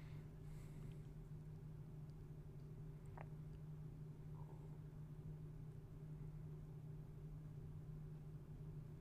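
A steady, low rumble of road traffic drones on without pause, a constant hum of engines with no voices and only a faint brief tick partway through.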